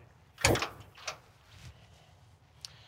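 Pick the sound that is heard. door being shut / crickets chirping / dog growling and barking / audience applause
door being shut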